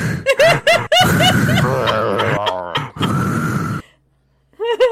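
Loud heavy breathing from a played Toyota car advert, with voiced groans and gasps in quick repeated bursts, briefly falling silent near the end before starting up again.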